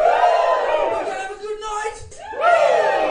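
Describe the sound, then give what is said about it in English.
A crowd lets out loud, sustained cheers and whoops, voices rising together, dipping briefly mid-way, then surging again into a second rousing woo. “When you're in a crowd and someone's got a microphone, and that person yells a question out to the crowd, any question you can answer with a word, woo!”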